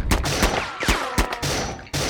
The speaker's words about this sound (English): Now be careful to avoid the gunfire.